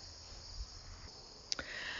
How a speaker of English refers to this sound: Hear how loud the crickets are. Oh, my goodness.